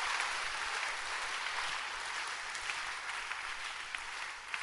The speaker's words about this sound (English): Clap your hands for God and for mothers.